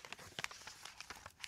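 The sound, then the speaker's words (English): A flap of a sheet of paper is folded up, giving a string of soft, crisp crinkles and taps. The sounds come in short irregular bursts, quiet overall, with no talking. “I'm gonna take this flap here and fold it up.”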